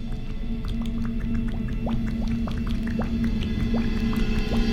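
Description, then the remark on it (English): Thick, wet bubbling and squishing from a sourdough starter, the mother dough, bubbling and churning: frequent small pops and gurgles in an irregular stream, over a steady low hum, with no voices. “Although this one is bubbling and churning like I've never seen.”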